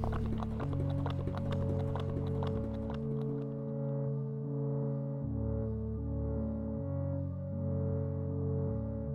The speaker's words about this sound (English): It was horses going kind of in the Kentucky Derby, like you're right on the track.